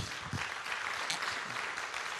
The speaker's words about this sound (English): Did you receive today's message? Would you give him a great round of applause?